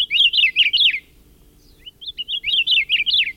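A Hawaiian akiapolaau honeycreeper calls in two bursts of rapid, high warbling notes with a brief pause of softer chips between them, fairly loud with no voices.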